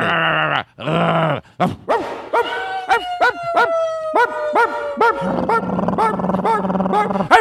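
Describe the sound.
People do a vocal impression of dogs barking, a run of rough barks, yelps and drawn-out growls and howls coming close together, loud, with no actual talking.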